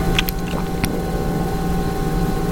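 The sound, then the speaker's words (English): A refrigerator hums in a steady, unbroken low drone with faint tonal overtones, holding the same loudness throughout, with a couple of brief clicks near the start and no voices. “So I'm gonna boost the sound of the fridge right now so that you can hear it.”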